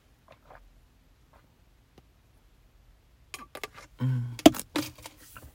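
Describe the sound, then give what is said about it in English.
Someone drinks water: a few moments of near silence with faint clicks, then a cluster of wet swallowing gulps and container clatter, with no talking. “Sorry, I was drinking water.”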